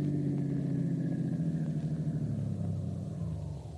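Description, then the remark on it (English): A car engine rumbles steadily, its pitch shifting slightly as the car turns into a workyard and slows to a stop in a garage next to a truck, the sound tapering off at the end. “Turn into the workyard and park in our garage. And next to the truck there.”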